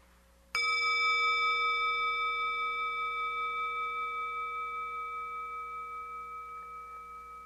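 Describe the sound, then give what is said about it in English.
A single meditation bell is struck once during a guided listening meditation, then rings on with a clear, steady tone that slowly fades over several seconds, heard alone in a room. “Or of the sound of these bells.”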